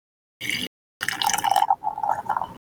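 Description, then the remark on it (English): Coffee poured into a cup: a brief splash, a short pause, then a steady pour with a ringing, gurgling tone lasting about a second and a half. No one speaks. “All right, time to pour my coffee. Pouring his coffee.”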